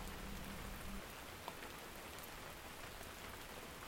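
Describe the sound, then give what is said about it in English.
Steady rain falls on a small cabin by a stream, pattering in a continuous, even wash, with a low rumble of distant thunder in the first second and a single brief tap near the middle. “You're listening to the sound of rain falling in a small cabin by a stream, with a bit of distant thunder in the background.”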